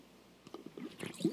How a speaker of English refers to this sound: I'm going to take a drink of water real quick.